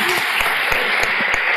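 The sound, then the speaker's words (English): An audience claps steadily in a dense wash of many hands, with a few sharper individual claps standing out. No one speaks, and the applause holds at an even, moderate loudness throughout. “You can clap.”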